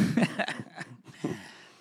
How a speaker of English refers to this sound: Stop making me cough. It's going to be a tough episode to get through without coughing.